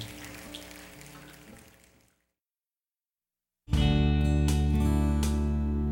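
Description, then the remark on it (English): Many people snap their fingers together, a dense pattering that imitates rainfall, over sustained music. It fades out, falls silent briefly, then returns loud and full. “Let's do the finger snapping again. That's what we need, the rain of His Holy Spirit.”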